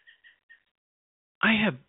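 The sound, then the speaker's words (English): Three quick, faint bird chirps sound in a steady rhythm through wide-open windows in Georgia, followed after a short pause by a brief, loud burst of a human voice. “Does anybody hear that chirping noise?”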